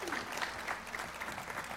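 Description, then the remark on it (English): A church audience claps to God, a dense, steady patter of many hands with no pauses, holding an even loudness for the whole stretch. “You can clap to Him.”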